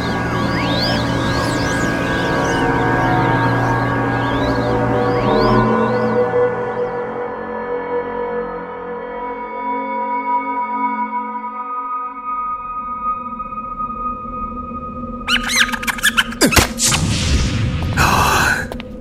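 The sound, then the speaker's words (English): A magical cube shatters between someone's hands, unleashing the force within: a layered humming drone with warbling high tones swells and thins out, then a sudden loud burst of crackling, glassy shattering with sharp cracks erupts near the end. “A split second later, the cube shattered”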